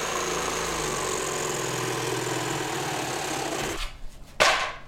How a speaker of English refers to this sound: It seemed safest to let my dad handle all the sawing.